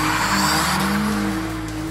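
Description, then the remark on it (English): A test car's engine roars loudly while its tires squeal in a sustained, high screech as it takes off and accelerates into a loop-the-loop, with no voices. “Go and get in our test car, sir.”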